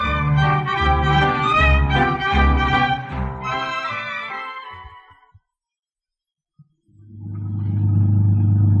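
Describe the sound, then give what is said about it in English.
A car engine rumbles loudly, then fades away to silence; after a brief pause and a single click, the engine starts up again and swells steadily. “it took me a few days, but I finally got you in my car.”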